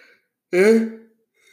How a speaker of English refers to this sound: Yawning.